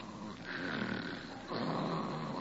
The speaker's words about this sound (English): Holy smoke, she snores. Oh, no, no, she never told me about this. With a whistle yet.